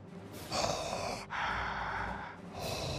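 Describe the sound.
A voice imitates Darth Vader's heavy mechanical respirator breathing from Star Wars: two long, hissing breaths, an inhale and an exhale, with a third beginning, loud with a raspy, filtered quality.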